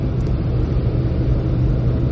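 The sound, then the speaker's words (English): A steady, low truck engine rumble fills the space, heard from inside the cab while driving down a highway, constant and fairly loud with a broad hum and no speech. “So I'm in the truck. Not mine, the wife's truck, because mine is way too hard on fuel to take on the highway, apparently.”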